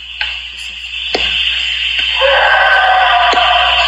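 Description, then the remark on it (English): An eerie, drawn-out, man-like scream carries from the woods behind a house, swelling louder partway through over a low background rumble, with a few sharp cracks or knocks scattered across it. “That sounds like a man screaming.”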